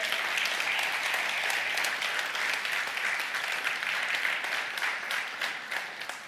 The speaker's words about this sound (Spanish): Ya lo están empezando a creer, dale un aplauso a Dios entonces.